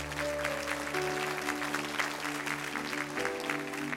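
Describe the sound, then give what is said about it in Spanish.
A crowd claps steadily for several seconds, applauding the Lord after an afternoon prayer, a dense wash of applause over sustained low organ or keyboard chords that hold beneath it throughout. “Si el Señor le habló en esta tarde, dele un aplauso al Señor.”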